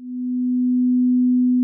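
A steady, pure ringing tone like a struck tuning fork, coming from the icon of Ravenloft: one low-pitched note that swells in quickly and holds evenly for under two seconds, with no voices.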